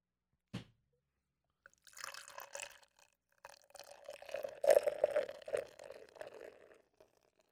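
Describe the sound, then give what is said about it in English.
A sharp click, then beer glugs and splashes steadily into a glass for several seconds, the gurgling pitch rising as it fills. Fairly quiet, with no talking. “Let's pour this motherfucker and see what Hamilton family has for us.”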